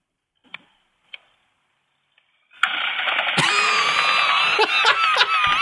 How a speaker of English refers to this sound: can be seen getting hit with a powerful jet of water after setting the sprinkler off